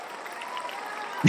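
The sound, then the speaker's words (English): A short studio-audience cheering sound effect, played from a little feature to congratulate a guest: a steady wash of crowd noise with faint whoops running through it, ending abruptly as a voice cuts in. “The studio audience is cheering for you.”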